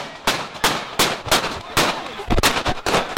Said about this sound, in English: The protest started peaceful. Police gave everyone a wide berth as they gathered in front of Metro Hall. But around 11:30 p.m., gunfire came from inside the crowd, wounding seven people.